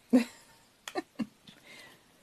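A handful of irregular, soft clicks and clinks, like a utensil scraping and tapping a crock pot while it is emptied, spaced unevenly over a couple of seconds in an otherwise quiet room.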